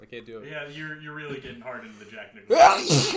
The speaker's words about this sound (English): Bless you.